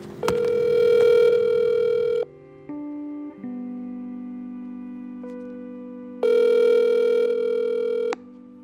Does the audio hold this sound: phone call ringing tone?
yes